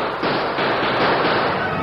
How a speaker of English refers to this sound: Slamming the door in Lacey's face caught the rustlers unawares, and after the first burst of gunfire leveled at the heavy door, Lacey and his men began to take up strategic positions about the corral and outbuildings.